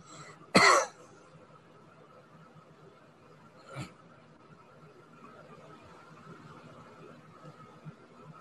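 Several people coughing: a sharp, loud cough bursts out, followed about three seconds later by a softer, shorter cough, with a low steady hum filling the quiet between them.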